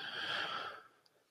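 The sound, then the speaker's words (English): A single short throat clear, a breathy, raspy burst lasting under a second that fades into quiet. It's fairly soft, with no talking around it. “So not a cough that time, just a throat clear.”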